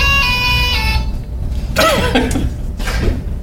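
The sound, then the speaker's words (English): A phone ringtone plays: a steady electronic tone with rich harmonics, then bursts of processed, robotic, vocoded baby-like vocal sounds over a low background rumble, fairly loud. “This is your new ringtone. The baby vocoder.”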